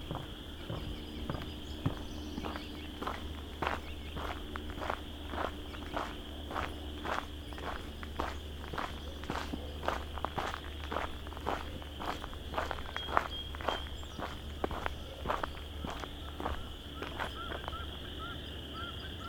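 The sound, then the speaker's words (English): Steady, evenly paced sloshing steps as a couple of mallards wade through shallow water, continuing throughout, over a constant high-pitched chorus of several thousand chorus frogs with a few bird calls. “Oh, couple mallards wading through the water here.”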